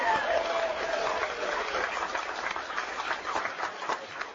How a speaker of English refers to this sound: give me a round of applause, folks.